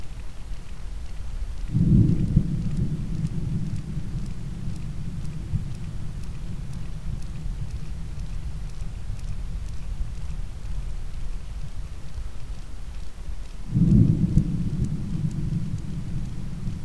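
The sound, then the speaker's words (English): Two deep, booming seismic air gun blasts, fired from a ship exploring the seafloor for oil and gas deposits and recorded by hydrophone, roughly twelve seconds apart, each a sudden low thud trailing into a long rumble, over a constant hissing underwater background. “Yeah, so this is seismic shooting, which is exploring the seafloor for oil and gas deposits.”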